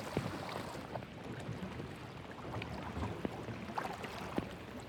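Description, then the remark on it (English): Water laps steadily against the hull of a boat on a lake, a soft, continuous sloshing with occasional small splashes, fairly quiet, with no voices. “Except for the lapping waves and the occasional page being turned, all was quiet.”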